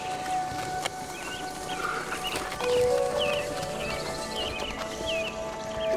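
Horses clip-clop with scattered hoof knocks amid a busy outdoor din, with occasional neighs and high chirping calls mixed in at a moderate, steady level.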